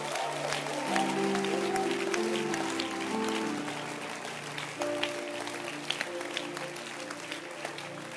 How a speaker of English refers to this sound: Clap your hands right there.